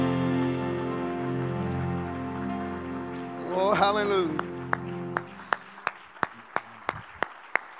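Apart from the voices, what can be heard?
audience clapping hands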